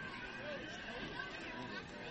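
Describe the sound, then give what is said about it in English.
Steady crowd chatter from a high school football game at Dixie, with a crowd from Tri-County North also on hand, a continuous murmur of many overlapping voices with no single speaker standing out, holding an even level throughout. “Once again, a good crowd on hand here at Dixie.”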